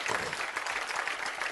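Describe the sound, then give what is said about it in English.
An audience claps together in a dense, steady burst of applause, many hands overlapping into continuous crackling noise that stays fairly loud throughout, with no voices heard. “Clap your hands and do something.”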